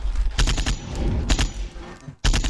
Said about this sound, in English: I'm trying to tell you, all you be hearing is gunshots over there, man.